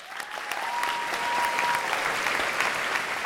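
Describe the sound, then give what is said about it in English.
A steady burst of applause from a group fills the whole stretch, dense crackling claps at an even level with no one speaking over it. “Let's please have a big round of applause for me and you and all of us.”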